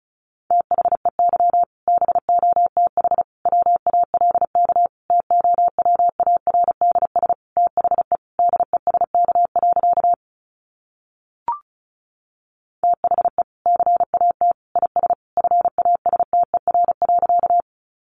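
Fast Morse code at 35 words per minute: a steady mid-pitched beep keyed into rapid dots and dashes, pausing for a couple of seconds with a single brief blip before the sending resumes.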